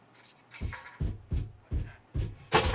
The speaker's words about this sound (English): What's that? Did you hear that? I don't know if you heard that. I was kicking the desk.